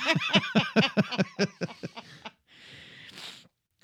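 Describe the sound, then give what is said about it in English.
A voice imitates Earl Sinclair chewing a man to death, with a quick run of about a dozen rhythmic, voiced munching bursts that slow and fade, then ends in a breathy, rasping hiss. “So Earl Sinclair does take a very long time to chew this guy to death.”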